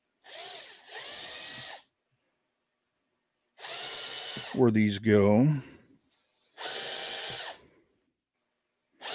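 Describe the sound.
A power drill drilling out holes whirs in several loud bursts of a second or two each, with short pauses between them; a person speaks briefly between two of the bursts.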